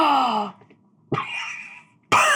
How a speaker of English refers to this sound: This is a dramatic gasp at a party.